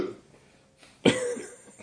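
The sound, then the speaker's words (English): One loud, abrupt burp bursts out after a quiet stretch, harsh and raspy, then trails off into a rough, wet tail. No one speaks. “Was that a vomit burp?”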